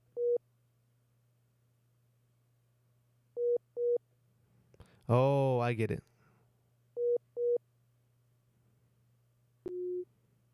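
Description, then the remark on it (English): Short mid-pitched telephone beeps sound over a steady low line hum, one, then pairs, ending with a lower, longer tone, as on a line placed on hold. A voice briefly speaks midway. “Do you hear this beeping noise?”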